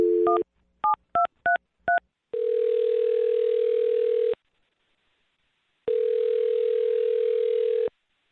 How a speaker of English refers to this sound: All right, here we go. I'm dialing the phone number.